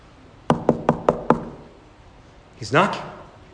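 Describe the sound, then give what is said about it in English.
Five sharp knocks on a door in a quick, even rhythm, loud, followed after a short pause by a brief vocal sound from a person. “And he tells us he stands at the door and he knocks.”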